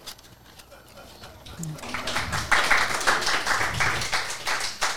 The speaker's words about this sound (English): Please don't all applaud at once. Thank you so much.